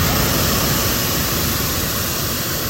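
A hot air balloon burner fires as the balloon goes up at the Rise Hattiesburg Hot Air Balloon Festival in Hattiesburg. It makes one loud, steady, unbroken roar, a dense rushing hiss that holds the same level for the whole few seconds, with no voices over it.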